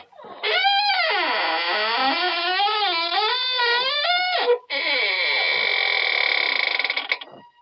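The creaking door of the radio show The Inner Sanctum opens in a long, loud, wavering squeal that bends up and down in pitch, breaks off briefly, then resumes in a steadier, higher groan before stopping.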